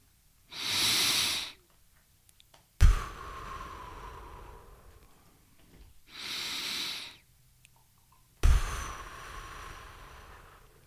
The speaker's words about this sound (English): Breathing. Yep. Breathing. Breathing. You lose fat through respiration. Oxygen in, carbon dioxide out.